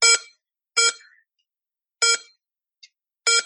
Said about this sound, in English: So it says that, and then it draws the atom, and then when it gets to the valence electrons, 2s2. It will make beeping noises. 2p4.